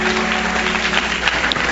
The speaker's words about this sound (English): First of all, I want to just thank all of our guests. Clap your hands for all of our guests today. Amen.